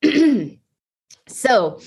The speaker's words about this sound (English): I'm sorry, I'm going to cough again. No, you're fine. I'm over here dying silently on mute while he's talking, and I'm like taking it in and like agreeing, but coughing my guts out over here.